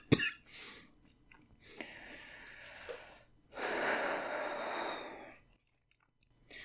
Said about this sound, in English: I took too big a hit. I already forgot, you guys. That's what happens all the time. And now I need a cough.